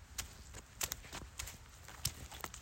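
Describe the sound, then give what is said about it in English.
Footsteps slosh through wet, spongy moss on a driveway, wet from rain, in a steady walking rhythm, each step a soft, squelchy crunch with faint rustling between, and no voices. “See if you can hear the slosh of my feet as I walk through it.”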